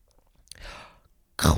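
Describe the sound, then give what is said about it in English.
A voice imitates a crunch with a breathy, gritty mouth noise, followed moments later by a louder, harsher burst of crunching. “That's a bad crunch sound.”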